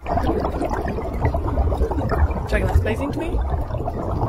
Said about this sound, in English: one of the most pleasing sound in the world is bubbles and water